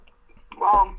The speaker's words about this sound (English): So, obviously, I'm going to take a sippy sip.